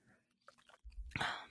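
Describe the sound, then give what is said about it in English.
A single sip of rum and cream soda, a brief wet slurp after a low thump, with no talking. “I'm about to take the first sip.”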